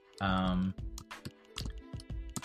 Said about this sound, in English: And you are going to hear me typing.